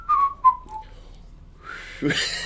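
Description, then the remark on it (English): A person whistles a few short notes that slide downward in pitch, then the tune stops and a breathy rush of air follows. “I can do a bit of a whistle.”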